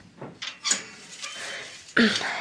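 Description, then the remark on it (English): The small wire door of the cage of a pet hamster named Frisky is opened to clean the cage out: a few light metallic clicks and rattles, a soft scraping hiss, then a sharper clack with a brief squeak near the end. No voices. “I'll open the cage door.”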